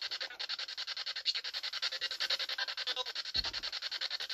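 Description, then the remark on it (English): Spirit box on its sweep function instead of a constant static feed: harsh, hissy bursts chopping rapidly and evenly, about eight pulses a second, steady throughout, with a short low thump near the end and no talking. “Instead of a constant static feed, we decided to turn on the sweep function of the spirit box to see if we can get any responses.”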